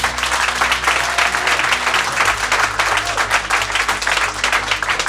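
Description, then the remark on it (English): An audience votes by applause, clapping for yes, that democracy was existentially threatened by January 6th: steady, sustained applause, a dense wash of many hands clapping at once with a faint low hum beneath, holding at an even loudness throughout with no voices. “Those who would say yes, our democracy was threatened existentially by January 6th, would you please applaud?”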